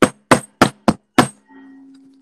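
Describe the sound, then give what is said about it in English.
Five loud, sharp knocks on a door, played as a sound effect, in quick, even succession, each a hard percussive bang, followed by a faint steady hum after the knocking stops. “It was the Loudlands postman knocking at Mr. Quiet's door.”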